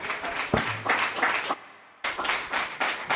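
Steady applause from a comedy show audience welcoming a comedian onto the stage, a dense wash of many hands clapping at moderate volume, briefly dropping out for half a second before the clapping resumes just as strongly.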